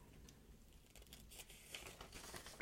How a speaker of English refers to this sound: Flipping over my page, because no power means I gotta use paper.